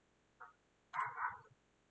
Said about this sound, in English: You hear that fucking dumb shit? Oh my god, I hope you can, because I hope my thing's really good and you can't hear it, but it just barked and there was like no noise.